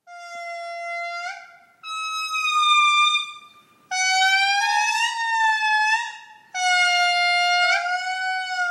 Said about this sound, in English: Oh, it's so beautiful and haunting, and also a little bit like whale sounds meets air horns. Right? It was definitely not what I expected. These recordings are from scientists who collected the songs from lemurs in Madagascar